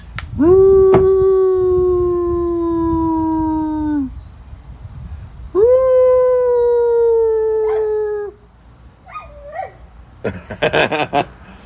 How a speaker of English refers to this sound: I bet I can get her to howl. Let's try it.